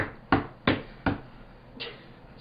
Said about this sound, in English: That was a knock on the door.